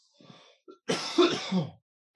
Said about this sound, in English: Oh, sorry. I cough way more in the evenings. All that gunk coming out.